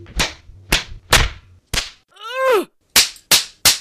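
Seven sharp, loud knocks of a camera being banged against the floor to break up old, gummed-up grease, spaced about half a second apart, with a brief descending squeal between the fourth and fifth blows.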